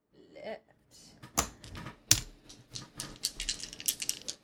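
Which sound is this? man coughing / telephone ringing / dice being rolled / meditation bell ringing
dice being rolled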